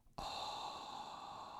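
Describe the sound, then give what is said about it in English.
A single whispered "ah" breath taken as a singing breath exercise: an airy exhale that starts abruptly and holds steady and breathy for over a second, with no talking around it. “So when I say ah breath, that means let's all whisper an ah.”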